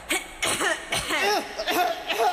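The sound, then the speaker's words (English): A voice imitates a dry cough from a cold, a quick series of several raspy, throaty bursts in close succession, fairly loud, with a bit of voiced strain between them. “It's like a dry cough.”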